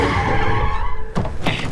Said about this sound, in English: slams on the brakes.